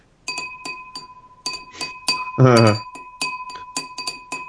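A quick rhythmic run of bright glass clinks rings out close by, tapped in a tune-like pattern with a lingering ringing tone, interrupted midway by a brief burst of voice.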